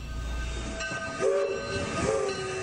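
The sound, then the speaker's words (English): A train traveling from Kansas City to Chicago rumbles by with a steady mechanical hiss while its whistle sounds two short, loud tonal blasts in quick succession. No one speaks. “From Kansas City, the train heads to Chicago”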